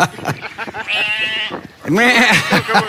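Two loud, wavering sheep bleats, the second longer and more quavering, with a few brief murmuring sounds before the first.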